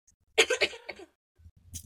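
A loud burst of several rapid coughs run together, then a short pause and a softer, rougher cough at the end.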